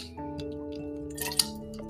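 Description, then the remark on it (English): Someone takes a drink of water: a quick cluster of small wet sips and a swallow, with a sharper gulp near the end, over a steady humming tonal background. No one speaks. “Just drinking water.”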